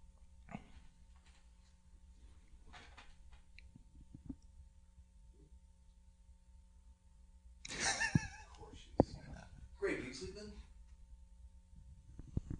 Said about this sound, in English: Is your pig snoring? What the fuck is that sound? That's a snoring pig. That's an adorable snoring pig.